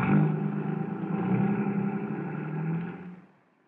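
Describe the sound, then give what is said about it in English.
A car engine runs with a steady, throaty hum that swells slightly as it pulls away, then fades out quickly as the vehicle drives off. No voices are heard. “Well, climb into my car”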